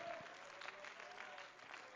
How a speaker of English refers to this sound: Come on, clap your hands to the Lord and let's give Him praise right now.